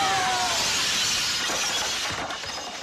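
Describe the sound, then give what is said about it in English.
A window pane shatters as somebody jumps out of a second-floor window. There is a loud, bright crash, followed by a scatter of tinkling glass shards that ring and fade over a couple of seconds. No voices. “Yeah, somebody jumping out of a second floor window.”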